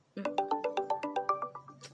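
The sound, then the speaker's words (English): A phone ringtone plays alone, unanswered: a rapid, bouncing run of bright electronic tones, about a dozen quick notes in a short melodic phrase, clear. “You just said it was good to call, so why aren't you answering the phone?”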